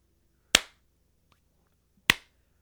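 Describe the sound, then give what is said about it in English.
Two sharp hand claps about a second and a half apart, crisp, each ringing out briefly with no talking, made as a reference so the audio and video line up when editing. “Yeah, when I go to edit it, like, the reference will be me clapping to make sure the audio and the video lines up.”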